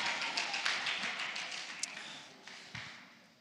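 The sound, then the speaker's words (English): An audience claps with two hands: a dense, crackling patter of many overlapping claps that starts strong and gradually thins and fades, with no one speaking. “Now, why don't you try clap with two hands?”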